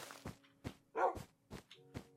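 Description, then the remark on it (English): A dog on snow, with no boots on its paws, barks in a quick series of about half a dozen short, gruff bursts, one louder and fuller in the middle, with no one talking. “Woof, yeah, Wolfie's got no boots. Boots to protect his paws on the snow.”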